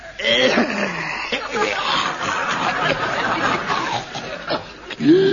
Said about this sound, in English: That's a cough.